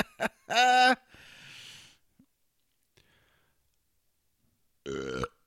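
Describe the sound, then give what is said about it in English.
A loud, drawn-out burp rumbles, followed by a breathy exhale and quiet stillness, then a second short, gravelly belch near the end. “You and your goddamn burps.”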